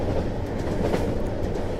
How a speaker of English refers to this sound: Well, there it goes, Rover. Another fucking space train. Flying space train.